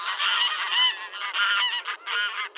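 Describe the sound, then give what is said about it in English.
Barnyard graylag geese on a farm honking in a loud, continuous clamor, harsh nasal calls overlapping in quick bursts with brief gaps, with no talking. “Is any bird more ordinary, more unlikely to draw praise, than a barnyard goose honking and waddling about the farm?”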